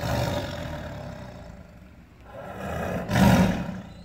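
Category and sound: animal, bengal tiger roaring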